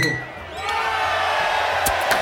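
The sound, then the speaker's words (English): Glasses clink together in a toast, with a couple of bright, ringing taps near the end over a steady murmur of a lively crowd. “So join us for a cheers.”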